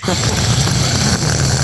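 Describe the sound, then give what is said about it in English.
Loud nasal breathing by a man right against a microphone, a steady rushing hiss through his nose with a low, rumbling undertone that continues without a break. “I can hear you breathing, by the way.”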